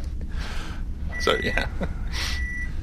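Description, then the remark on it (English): Three steady, high-pitched electronic beeps sound at an even interval, like a reversing truck or microwave alarm, over a noisy background with a few brief vocal sounds, recorded in a driveway. “Yeah, it sounds like a truck's ready to back over us, so...”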